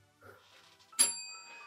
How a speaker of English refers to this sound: ring the bell, please.